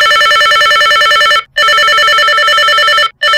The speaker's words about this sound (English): Now this phone has three ringtones and I think they're all a bit annoying, but well, I'll let you hear them. Ring one. Here's one.